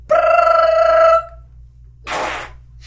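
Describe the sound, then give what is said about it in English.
A voice mimics a phone ringtone with one sustained, bright, buzzy tone lasting about a second, followed after a pause by a short breathy burst like a laugh or exhale. “That's your representation of ringtone anals?”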